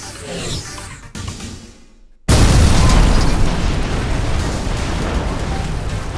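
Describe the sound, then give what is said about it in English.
Jodande helicopters explode: a sudden, heavy explosion erupts after a brief near-silence, a deep booming blast that gives way to a sustained, loud roar of rumbling debris and crackling noise. “And in a flash, the helicopters explode, sending Jodande employees diving for safety.”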